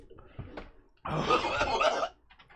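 A man vomits with one loud, strained, gurgling heave lasting about a second, with quieter shuffling and breathing before and after.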